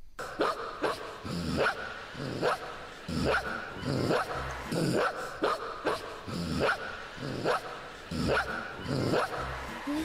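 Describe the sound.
A small child's voice imitates a dog, letting out a steady series of sharp, yappy barks, about a dozen in quick succession, loud with no other talking.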